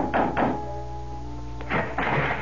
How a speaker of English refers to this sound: And dusk was beginning to fall when, exhausted, famished, and dirty from the road, I knocked on the door of the Adams house.